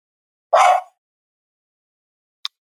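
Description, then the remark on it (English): A female dog gives one sharp, loud bark at someone heard in the hallway, followed by silence and a faint short click near the end. No one speaks. “Because my dog's still barking.”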